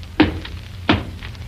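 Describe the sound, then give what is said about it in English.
A chair being pulled out at a breakfast table, heard as two short, dull wooden knocks about a second apart over a low, steady background hum. “He pulls out a chair.”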